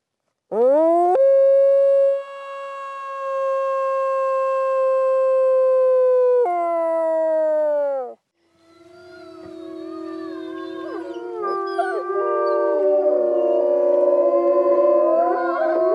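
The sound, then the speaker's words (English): A dog lets out one long, steady howl that dips in pitch, then a chorus of overlapping howls joins in, wavering at different pitches, loud and with no talking. “Can you show me your howl?”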